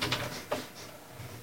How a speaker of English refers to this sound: Close that door.